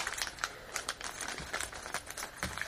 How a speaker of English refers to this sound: Alright, so the figure is just kind of taped onto the interior box. I'm going to take my trusty scissors and cut this poly bag open.